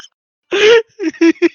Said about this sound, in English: Yeah, that's an appropriate fart sound.